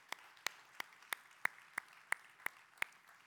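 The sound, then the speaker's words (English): Steady, evenly paced hand clapping, about nine sharp claps roughly three per second over a faint background hiss, with no talking; an audience at a church service at Genesis applauds to thank people after a prayer. “Let's thank them one more time. Appreciate them.”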